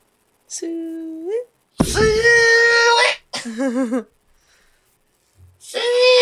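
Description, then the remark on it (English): A person imitates a pig call: four loud, high-pitched squealing cries, some rising, one warbling, separated by short pauses, with no other talking. “Do you have a pig call?”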